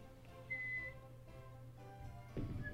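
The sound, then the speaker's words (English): A short, thin whistle sounds once, then a briefer second one follows a couple of seconds later, both fairly faint over a low steady hum, with no one talking. “Yeah, he kind of like follows the sound of the whistles, flies over and starts circling around.”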